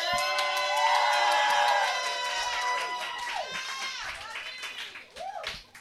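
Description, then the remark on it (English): A crowd cheers and screams loudly, with high whoops and whistles over scattered clapping. The noise stays strong, then gradually thins out toward the end. An audience at a competition makes noise to vote a contestant into the finals. “if you want to see Ian Ferguson in the finals, make some noise”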